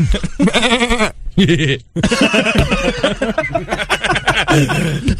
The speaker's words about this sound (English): I will say this about the goat. A goat noise is the greatest sound to listen to when you are high.